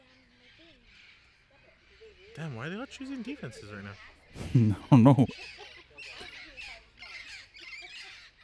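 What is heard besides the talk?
parrots squawking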